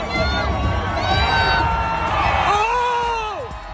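A young girl yells out a long, drawn-out cry near the end, rising over a loud, cheering outdoor crowd full of shouts and whoops.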